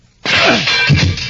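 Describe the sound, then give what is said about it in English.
A steel cell door is smashed open with a sudden, loud crash, then a second of harsh clattering and grinding as it gives way. No voices. “But steel can be smashed if it has to be.”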